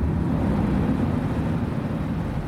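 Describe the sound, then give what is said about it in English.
A steady, low rumbling roar of air at a Water District filtration plant. Every 22 minutes the airflow reverses to blow instead of suck, cleaning the holes of thousands of perforated stringy straws. It holds an even loudness throughout with a broad whooshing texture and no voices. “So every 22 minutes, the airflow reverses to blow instead of suck to clean the holes.”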